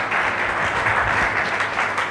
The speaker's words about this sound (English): Church, clap your hand for Jesus.